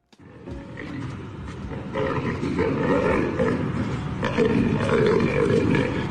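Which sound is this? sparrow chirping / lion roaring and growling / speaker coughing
lion roaring and growling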